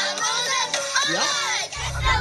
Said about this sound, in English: So this is the McDonald's commercial. And there's the kids in the background.